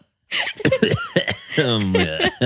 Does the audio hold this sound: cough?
yes